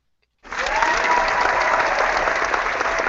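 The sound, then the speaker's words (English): Applause from an audience breaks out suddenly after a brief silence, a steady, dense wash of many hands clapping at an even loudness that holds through to the end. “Yeah, I don't know why you're clapping for that”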